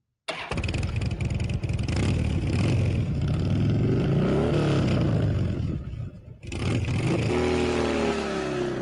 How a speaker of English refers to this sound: Listen to that engine roar.